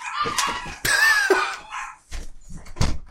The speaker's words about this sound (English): What is your problem? Were you guys seriously just barking at the dark?